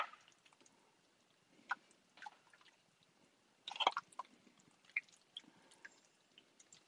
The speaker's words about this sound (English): Okay, so we've got about 2 cups, about 2 pounds. We've got about 2 pounds of chicken here. We're just going to lay it in the pot.